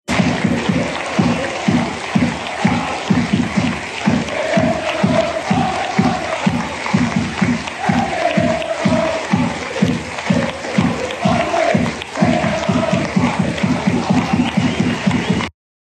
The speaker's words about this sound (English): The following day, some Celtic fans had their say. This was a planned minute of applause before Sunday's game against St Mirren.